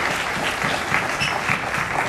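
A crowd applauds steadily as people come out carrying items, a dense, even wash of many hands clapping at a constant moderate loudness throughout, with no voices standing out above it.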